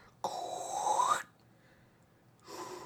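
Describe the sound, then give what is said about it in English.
A person imitating Darth Vader's breathing: a long, hoarse, resonant inhale, a brief pause, then the start of a raspy exhale. No talking. “You cannot just do Darth Vader breathing right now.”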